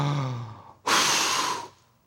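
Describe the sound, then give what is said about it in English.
A voice imitates the wolf from the Three Little Pigs blowing down the second pig's house, built of sticks: a short, low, descending voiced groan, then a loud, forceful whooshing blow of breath that lasts almost a second before cutting off. “I'm going to huff and I'm going to puff and I'm going to blow your house down.”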